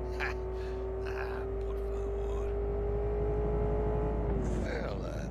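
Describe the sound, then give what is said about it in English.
A steady, droning video game car engine hums at an even pitch as the vehicle drives up to a border checkpoint, with a low rumble underneath and faint breathy vocal sounds at the start and end. “I'm driving up to the border checkpoint.”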